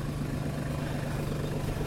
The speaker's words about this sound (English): There's a tractor here on the left.